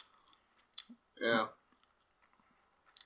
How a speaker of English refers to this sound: Once you hear those chewing sounds... Delicious. I wasn't even hungry when we started.